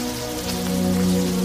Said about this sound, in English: I wish the rain would stop just once. It can't rain all the time.